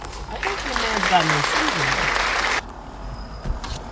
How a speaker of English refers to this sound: Let's give him an applause for, and what's the word, innovation?